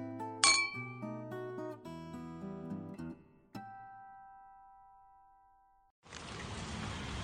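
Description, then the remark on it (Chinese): Wine glasses clink together in a bright toast in the evening, their tone ringing out for several seconds, followed by a softer second clink and a rush of steady hiss near the end. “就像你说的，为了我们今晚美丽的邂逅，干杯。”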